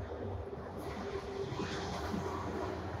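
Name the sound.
train passing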